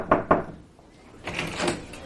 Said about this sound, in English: Knock, knock.